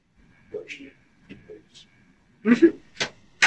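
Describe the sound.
A door is pushed shut with a muffled thump, then a couple of sharp clicks and knocks follow quickly. Faint voices murmur beforehand, fairly quiet.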